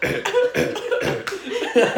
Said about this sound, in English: He's coughing in a blanket.